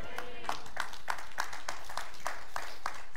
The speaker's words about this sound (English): Let me join in and make that nine of us clapping, okay?